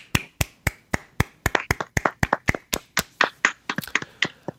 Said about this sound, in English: Congrats. Let's give a little round of applause.